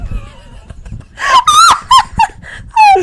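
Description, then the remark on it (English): A person mimics a dolphin with a burst of high, wavering squeals and chirps rising and falling in pitch, several loud whistling cries in quick succession after a soft, low rumbling start. “You just made a dolphin sound.”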